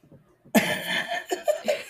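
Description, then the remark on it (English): A loud cough bursts out after a brief quiet moment, followed by a few shorter, raspy hacks trailing off in quick succession. “you're going to have to take out, like, all my throat clearings. It's okay. And my coughing.”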